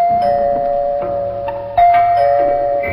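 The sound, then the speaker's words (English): A doorbell chime rings at a home with a sustained, resonant tone, struck again with a brighter, louder ding partway through. The chime is clear, with no voices. “It was only an hour later, while she was sewing a dress in the living room, that the doorbell rang.”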